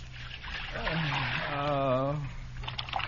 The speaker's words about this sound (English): Pour some hot water in this basin so I can soak my feet. Sure.